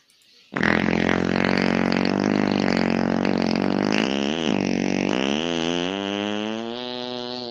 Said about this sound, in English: I am going to tell you, I believe that's 100% fake, but it's still a fart. I think this is what he does. I'm almost positive that that was a fake fart.